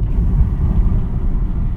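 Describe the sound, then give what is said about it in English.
A steady, heavy low-frequency rumble of road noise inside a car, continuous and loud, with no voices. “I'm in my car.”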